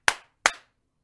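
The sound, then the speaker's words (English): Two sharp hand claps, made to check whether the audio is working, about a third of a second apart, each a bright crack with a brief fading tail, and then silence. No one speaks. “Do a little clap for us.”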